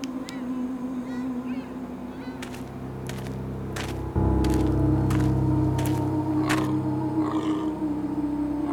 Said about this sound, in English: Is that... It's a deer. What's wrong with it? Shine your light on it again. Hey! Hey! It is... It's deaf. Full-grown deer. Deaf and blind. I don't see any injury.